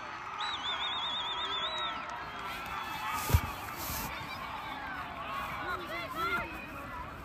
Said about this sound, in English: The crowd's getting loud. This could be a make or break play here.